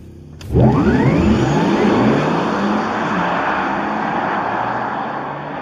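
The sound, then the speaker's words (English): A Porsche Taycan all-electric sports car accelerates hard, its whine sweeping steadily upward over a broad rushing roar. It sounds loud and holds for several seconds, with no talking. “And this is how the Taycan sounds.”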